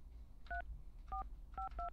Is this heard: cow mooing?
no